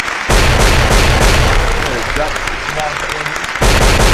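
Loud bomb sound effects dropped at the end of a show: a dense, rumbling barrage of booming blasts with heavy low-end crackle, easing slightly in the middle before a fresh explosive burst hits near the end. No talking.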